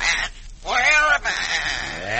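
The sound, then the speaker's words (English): A parrot named Clara squawks in a few harsh, warbling bursts with wavering pitch, loud and nasal, running almost continuously over about two seconds. “Not you talk so much, little parrot.”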